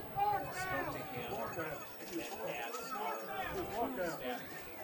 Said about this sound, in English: Hear the crowd grumbling about the down, but the guy working the chains over there was right to not turned the play over until South Point officially declined it.